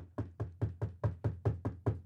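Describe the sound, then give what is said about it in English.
A rapid, steady series of about ten firm knocks on a door, evenly spaced, with a solid low thud to each rap and no voices. “I mean, it's like you don't even know, you're not even paying any attention, and all of a sudden there's a knock on the door.”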